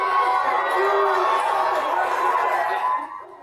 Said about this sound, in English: So there are tons of people who were kicked out of that meeting. They're yelling at the school board in the parking lot, who of course retreated.